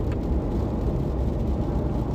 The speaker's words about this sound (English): What's going on? There's like cars all over the place.